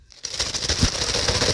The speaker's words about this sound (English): You hear that? Your coffee's empty. My coffee's empty. That's just the sound of ice cubes.